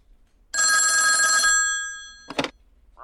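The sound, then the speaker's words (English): A single loud, metallic telephone bell ring that rattles for about a second and fades out, followed by a short clunk like a receiver being picked up. “get my executive friend on the phone right away.”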